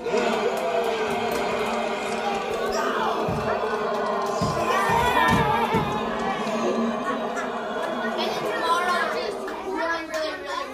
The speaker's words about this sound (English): What are those people cheering about? What are they cheering about?